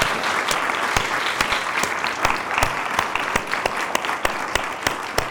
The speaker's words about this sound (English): I wanted us to give our panelists a quick round of applause. Yeah. Because they did a great job.